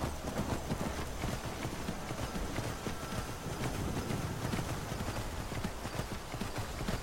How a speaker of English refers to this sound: I think I'll just hop on the horse and ride, and she'll catch up with us when she catches up with us.